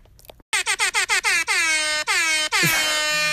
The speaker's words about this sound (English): Another rap air horn timeout and time in.